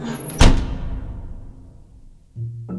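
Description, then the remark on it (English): A heavy casket lid slams shut with a single sharp, booming impact, followed by a low resonant decay and faint rumbling, then a muffled dull thud near the end. “The foul smell of the dead woman made him woozy, and her dead weight on top of him muffled his cries as the lid to the casket was slammed shut.”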